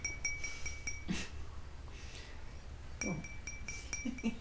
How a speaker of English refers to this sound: the material, the hardness, the density, the atomic structure, and also in this case how much water there is in the glass, so the volume that is capable of resonating.